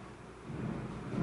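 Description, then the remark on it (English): A low, steady rumble of thunder outside, swelling slightly partway through, with a soft hiss of rain or wind underneath and no voices. “Thunder.”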